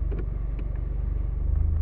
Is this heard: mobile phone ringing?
no